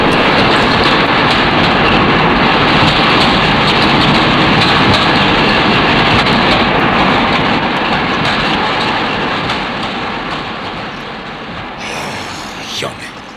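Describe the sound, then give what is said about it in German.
A train thunders past, a loud sustained roar with rattling clatter from the wheels, gradually fading away. “beinahe hätte dich der Zug erwischt.”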